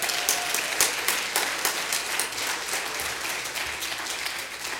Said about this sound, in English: If you're welcome to come tonight, and let's give God one more clap offering for what He has done.